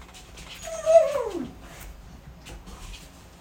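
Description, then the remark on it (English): A dog lets out a drawn-out, falling whimper, followed by a few fainter whines and snuffles over a low background hum. “We had a dog going a little bit crazy, and they're really, really bad right now.”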